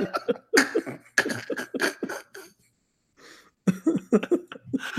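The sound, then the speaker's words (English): A person coughs repeatedly in loud bursts, a harsh coughing fit with a brief pause and a soft breath midway before more coughs follow. “So I believe I cough.”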